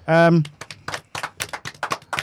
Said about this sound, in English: We've also got special guests I mentioned here. Do a round of applause.